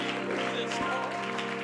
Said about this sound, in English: Come on, why don't you clap your hands to the Lord?